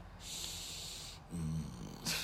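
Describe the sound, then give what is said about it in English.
A person imitating sniffing makes a long, exaggerated sniffing sound, followed by a short voiced grunt and the start of another loud sniff, with no speech. “Line up for your sniffing. Re-education and like a sniff.”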